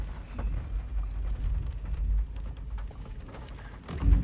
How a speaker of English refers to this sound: And it's raining.